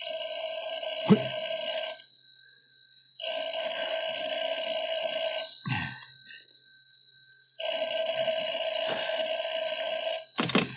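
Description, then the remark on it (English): A telephone bell rings loudly in three long, rattling bursts separated by short pauses, with a few soft thumps in between and no one speaking. “I'm sorry, he can't come to the phone just now.”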